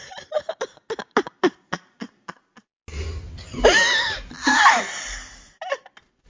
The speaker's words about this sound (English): I wasn't laughing though. I was coughing. Oh, it's like I inhaled.